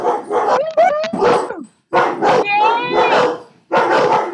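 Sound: dogs barking excitedly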